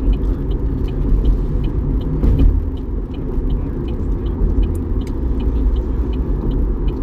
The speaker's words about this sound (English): Now, that's the Amtrak train.